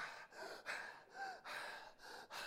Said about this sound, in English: For the next 10 seconds, breathe as hard and as fast and as long as you can, and save it up for 5 minutes so you don't have to breathe for the next 5 minutes. You ready? Go. I don't hear any breathing. Come on, let's go.